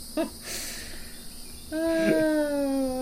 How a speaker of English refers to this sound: reckon these hens are more pissed off than somebody stuck on the Ravenel Bridge at midday.